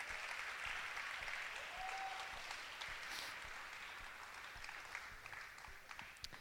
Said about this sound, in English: Let's give yourselves a huge round of applause.